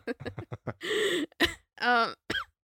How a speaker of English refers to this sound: now I'm coughing.